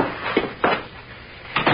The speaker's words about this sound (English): Is there a key in the door? Yes. Good. Well, we're through here. Go ahead, I'll lock up.